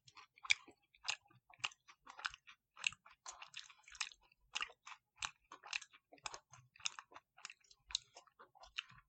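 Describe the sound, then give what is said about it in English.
Crunchy chewing of a chocolate candy bar with Reese's Puffs cereal pieces in the middle, steady crisp bites repeating about twice a second for several seconds, loud, with no talking. “Having the Reese's Puffs in the middle, though, and that crunches.”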